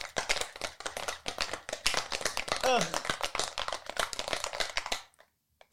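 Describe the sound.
A cocktail shaker holding a Kahlua drink rattles with ice in fast, steady, loud bursts for about five seconds, then stops abruptly. A brief voiced sound rises over the clatter midway.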